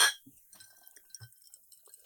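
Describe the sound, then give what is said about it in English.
A sharp glass clink opens, leaving a faint lingering ring, followed by quiet sipping and small liquid and swallowing sounds of a bourbon-based cocktail made with bourbon, Cointreau, lime juice and simple syrup. No one speaks. “we are drinking a bourbon-based cocktail called the High Screamer”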